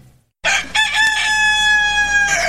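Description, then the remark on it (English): A rooster crows loudly, one long sustained cock-a-doodle-doo with a strained, harmonic-rich tone that holds steady before breaking off at the end. “That's my rooster, Big Red. He's always upstaging me.”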